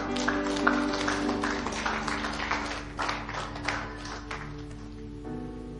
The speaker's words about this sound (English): Clap your hands for our church.